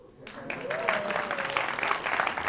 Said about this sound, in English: Single people clapping. Single people clapping.